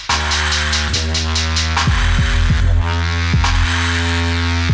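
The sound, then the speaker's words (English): A loud, steady low drone like a didgeridoo, throbbing with rhythmic pulses and buzzy overtones, running continuously for the whole stretch with no voices. “Sound like a didgeridoo gone wrong.”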